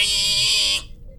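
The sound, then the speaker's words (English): A voice imitates the squeal of a 'pig boy': one loud, shrill, sustained cry held steady for under a second before cutting off abruptly. “Squeal for the pig boy.”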